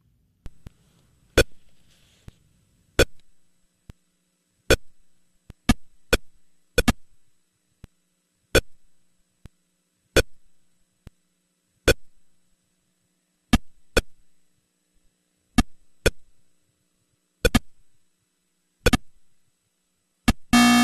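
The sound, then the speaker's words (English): Sharp electronic blips from a 1970s arcade tennis video game with two paddles, a dashed-line net and a ball on a black screen, sounding one at a time at an uneven back-and-forth pace over near silence, with a short buzzy burst at the end. “That was video games in the 1970s.”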